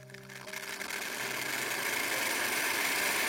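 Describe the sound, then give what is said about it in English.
A coffee machine starts up with a brief humming motor tone, then settles into a loud, steady mechanical whir and hiss that builds slightly and holds without any talking. “She wiped her sweat with a sports towel and switched on the coffee machine.”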